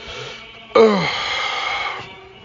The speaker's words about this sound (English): Anyway, I'm sorry I'm yawning so much today. I don't know why.